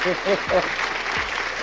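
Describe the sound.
A steady burst of applause, dense clapping that holds at an even loudness throughout, with a few short voiced sounds over it at the very start.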